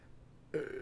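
After a moment of near silence, a single abrupt hiccup bursts out close to the mic: a loud, throaty, voiced gulp that lingers briefly.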